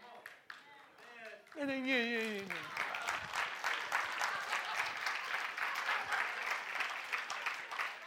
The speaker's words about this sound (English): This ain't that church. Don't be bringing grandma's claps. You're going to clap, clap.